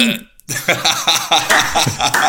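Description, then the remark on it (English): A long, loud burp after drinking Diet Pepsi, a drawn-out rumbling belch lasting a couple of seconds after a brief pause, with no talking around it. “The Diet Pepsi burps.”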